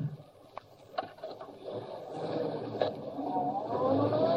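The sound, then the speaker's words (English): A car engine starts up after a few sharp clicks as a man gets into his car at the curb, then revs and climbs steadily in pitch as the car pulls away, growing louder with a low rumble underneath and no voices. “That's our man, Kato. He's getting into car at curb.”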